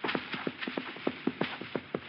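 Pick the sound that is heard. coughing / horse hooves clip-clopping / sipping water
horse hooves clip-clopping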